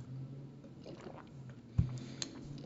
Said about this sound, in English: I'm taking a sip of cranberry juice.